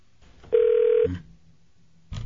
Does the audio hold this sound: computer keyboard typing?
no